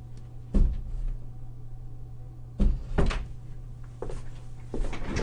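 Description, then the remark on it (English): A door is handled and shut, giving a few solid thumps and clunks spaced over several seconds, with a steady low hum in the background and no talking. “I forgot to close my door.”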